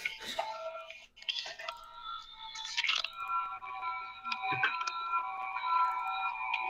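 A laptop gives off a sustained, faintly melodic buzzing made of layered steady tones, broken up by a few clicks and shifts early on before settling into a continuous hum.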